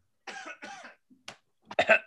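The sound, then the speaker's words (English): A few raspy coughs and throat-clearing bursts in quick succession, with short pauses between them, ending in a louder, harsher clearing of the throat, done just before starting a recording. “Wait, let me get my pre-coughs in.”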